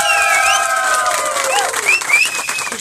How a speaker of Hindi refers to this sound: बिल्कुल बिल्कुल, एकदम सही जवाब आपने दे दिया है, क्या बात है, तालियां बजनी चाहिए।